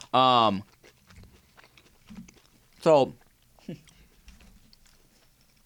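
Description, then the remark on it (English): Soft chewing of a Filet-O-Fish sandwich dipped in Szechuan sauce, with faint moist clicks and crunches between a few short spoken words from a voice. “hold on, guys, just chewing. I don't want to chew all in your ear if you're listening to the podcast.”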